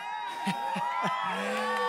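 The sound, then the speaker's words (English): An audience at a live At the Movies event cheers and whoops steadily after a movie trailer and intro, a dense wash of crowd noise with individual shouts and rising, wavering voices poking out above the roar. “Yeah, keep cheering.”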